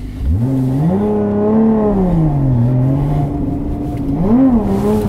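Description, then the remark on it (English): A car engine revs hard and continuously as the car drifts in a perfect radius on a skid pan, a large circular asphalt area. Its pitch climbs, sags and surges again in smooth waves, loud and steady throughout with no voices. “And we're now drifting in a perfect radius on it looks like a skid pan, a large circular asphalt area.”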